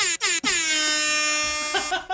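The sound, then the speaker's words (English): A loud air horn sound from a phone app blares in two quick short blasts, then one long sustained honk that holds for over a second before a final stuttering burst, brassy and harsh. “Is your air horn app what? Up?”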